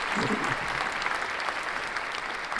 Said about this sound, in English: So let's just give Io West and improv comedy a round of applause.